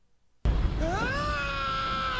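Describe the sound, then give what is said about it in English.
A scream sound effect, played as a 'mail scream' to introduce a listener letter, breaks out of silence with a sudden loud burst, then a sustained, piercing wail that rises in pitch and holds to the end, over a rough, noisy rumble. “I'll do, well, in that case, I will put up a mail scream right now.”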